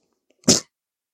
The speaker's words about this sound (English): We got another cough. This one's not muted as well, but we'll see how it does in post. I didn't reach it in time. I tried. So close.